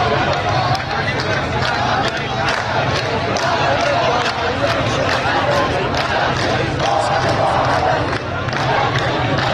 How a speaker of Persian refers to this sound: براز جان مثل اینکه شلوغ شده. براز جان، آره. بعد خروج هزاران تن از مردم براز جان پس از قطعی 4 روزه آب با شعار براز جانی میمیرد ذلت نمیپذیرد. بشنوید.